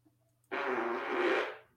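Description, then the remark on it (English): A single fart, fairly loud, lasting about a second as a buzzy, sputtering rasp before trailing off. No one speaks over it. “Who just farted?”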